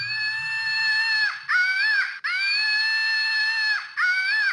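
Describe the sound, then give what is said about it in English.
A screaming flying monkey toy with a cape and surgical tubing, which screams as it flies across the room when pulled back and let go, lets out a loud, high-pitched, wailing shriek in long sustained bursts with brief breaks and dips in pitch between them. No one speaks over it. “you pull him back and then you let go of him and he flies across the room screaming through the air”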